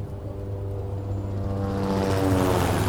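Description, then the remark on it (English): A police helicopter's engine drones steadily, its low rotor hum growing louder over a few seconds as it approaches, with no voices. “He felt time was of the essence, so he took the helicopter.”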